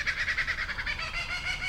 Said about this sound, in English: But that morning stood out because it was the first time I'd heard a kookaburra in my neighborhood.